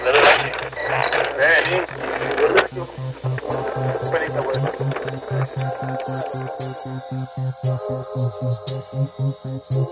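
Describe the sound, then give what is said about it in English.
A man switches on an air conditioner, which kicks on with a burst of hissy noise, then settles into a steady, rhythmic mechanical thrumming that pulses low, with faint muffled voices underneath, heard on a recorded tape. “So what this guy does is turns the switch, the air conditioning starts to cover up, to make noise, to cover up.”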